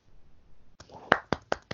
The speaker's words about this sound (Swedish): Verkligen. En liten applåd i alla fall.